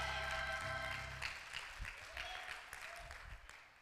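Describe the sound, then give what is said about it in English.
An audience claps hands in a dense, steady burst of applause, with a sustained organ-like chord sounding underneath at first before fading out. “Come on, clap your hands if you know who he is.”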